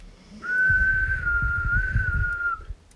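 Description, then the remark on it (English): A man whistles a long, steady note that barely changes in pitch, held for about two seconds over a low, rumbling background noise, with no talking. “And he's whistling.”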